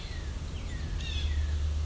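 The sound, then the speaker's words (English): Faint yellow-billed cuckoo calls from an adult and a young bird: a few thin, high, downward-sliding notes drifting over a steady low rumble of outdoor background noise, with no one speaking. “But I got a good recording of the adult in addition to the young one, which I'm thinking were yellow-billed cuckoos.”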